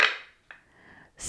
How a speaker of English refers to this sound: Gotta pass the dice. Dishing up the dice. I'm rolling for it.